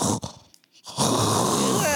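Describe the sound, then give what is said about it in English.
A voice imitates a man's loud snoring: a short rasping breath, a brief pause, then a longer, louder, rattling snore. “Like, side note, y'all, I was sleeping with somebody that was snoring like...”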